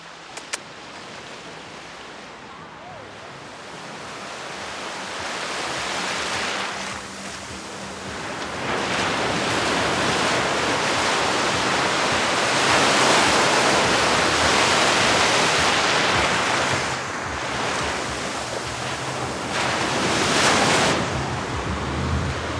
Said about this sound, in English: So I'm standing in the ocean right now. I have waves coming up and crashing into my ankles.